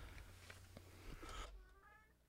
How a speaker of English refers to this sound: That's Mama Cat crying for her babies.